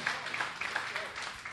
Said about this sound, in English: Amen. Amen. Amen. Y'all can clap for Jesus.